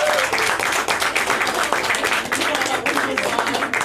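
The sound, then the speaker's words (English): The state champion Clinton High School girls hockey team bursts into sustained applause for their coaches, a dense, steady patter of many hands clapping for several seconds, with some voices mixed into the noise. “How about a round of applause from the state champion Clinton High School girls hockey team for your coaches”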